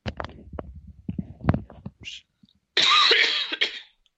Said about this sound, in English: Sorry, I really had to cough, and I can't keep trying to clear my throat quietly.